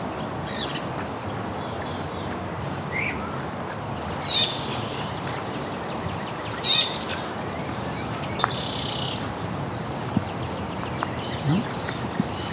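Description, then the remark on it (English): Several thrushes and a northern parula sing in scattered bursts of high chirps and whistles over a steady hiss of outdoor background noise. “Several thrush here too. Northern Perilla.”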